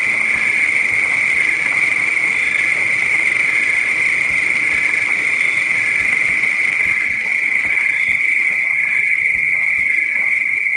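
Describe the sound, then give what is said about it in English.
Crickets chirp in a loud, steady high-pitched drone that runs unbroken for the whole clip, with faint pulsing rhythm and no voices. “Put those crickets away.”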